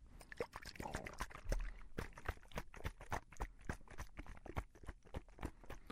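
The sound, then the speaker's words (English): Oil drizzling onto a hand, a quiet run of soft wet taps and small drips in an uneven patter, faint overall with a slightly fuller liquid swirl near the start. “And I think I'll go ahead and get some oil. And we'll drizzle it on your other hand now.”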